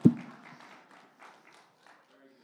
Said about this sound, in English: That's good preaching right there. I'll clap myself. Come on.